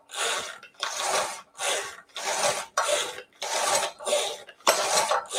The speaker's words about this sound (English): And then the more you pull, the finer it's going to get, just like the garlic chopper. Some people like a chunky salsa, some like a more finely mixed salsa.